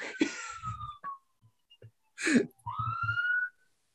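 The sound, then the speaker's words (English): A siren passes by, wailing, its steady tone dipping and then rising again, partly covered by a short breathy burst and soft low thumps. “We got a little siren coming by here, so we'll just we'll pause for a second and let it go.”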